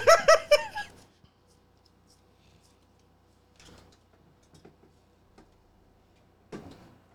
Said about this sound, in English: My chair is so squeaky.